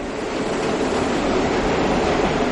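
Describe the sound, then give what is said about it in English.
Four subway trains arrive at the same time at the 79th Street and Broadway stop in Manhattan, a loud, continuous rumble and rattle of wheels on rails that fills the whole stretch without letting up. No one speaks. “I was at the 79th Street and Broadway stop. By happenstance, all four trains came in at the same time, and the noise was really mind-boggling.”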